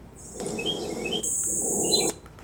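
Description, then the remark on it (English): Small birds chirp and tweet in quick bright bursts over a steady hiss of background ambience, with a high continuous insect-like whine, ending abruptly after about two seconds. “And this is the take we use for the birds chirping.”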